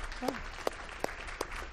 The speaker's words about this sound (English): You guys did just an excellent job. Let's give them another, all the kids who participated, another round of applause, shall we?